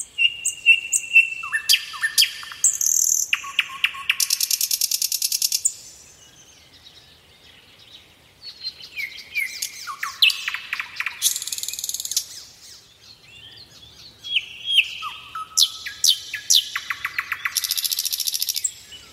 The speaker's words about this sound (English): There's a little bit of nightingale song for you there that I popped in.